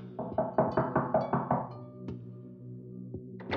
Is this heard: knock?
yes